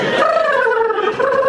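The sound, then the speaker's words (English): Someone vocally imitates a sparrow bathing its whole chest in the water of a fountain: a steady, loud, gargling warble with a wavering pitch, sustained for about a second and a half with no words. “And then the bird decides to bathe its whole chest in the water. And that is exactly the same sound I made on that toilet.”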